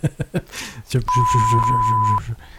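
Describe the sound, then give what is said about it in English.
A steady, high censor bleep holds for about a second, cutting across voices that keep talking and murmuring underneath it, with brief speech just before the tone starts. “There's murmuring behind the beep.”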